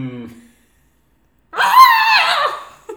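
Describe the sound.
A man lets out a loud, strained, wavering bleat-like scream, imitating a screaming goat demanding schnapps, lasting about a second after a brief low murmur and a pause.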